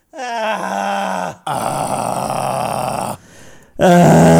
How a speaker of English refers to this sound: Just give one of those. I feel like people don't do that that often. No. Have a cathartic little scream.